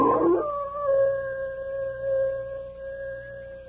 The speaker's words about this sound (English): Bill, listen to that old wolf out there. Sure sounds like a big one.